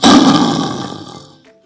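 A single loud lion roar bursts out, rough and throaty, then fades away over about a second and a half with no voices around it.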